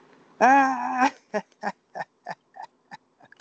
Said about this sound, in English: And see, we talking about dogs. You hear the dogs barking now.